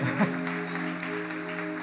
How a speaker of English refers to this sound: People are cheering and clapping for you if you said that prayer for a reason. They know the freedom that's on the other end of amen. If you meant it, we're celebrating with you.